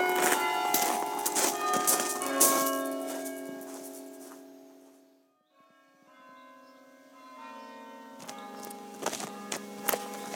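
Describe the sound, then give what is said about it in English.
Church bells ring faintly in overlapping peals, heard from a town's railway station on a breezy Sunday, their tones hanging and fading, dying away briefly in the middle before the ringing picks up again; no one speaks. “The bells are just faintly still ringing in the background.”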